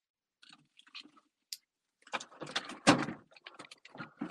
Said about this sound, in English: Sorry, I was trying to get these frostings out of a damn fridge.